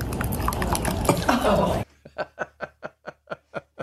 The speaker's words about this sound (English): Now, you want to hear the most disgusting sound ever? This dude's an idiot. What? This is him pouring mayonnaise into his coffee. Listen carefully here.